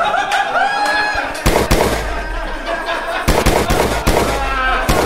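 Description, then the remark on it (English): Several loud, sharp gunshots crack out at irregular intervals, with smaller pops in between, over a busy background of murmuring voices and tonal sounds. “Why are the gunshots?”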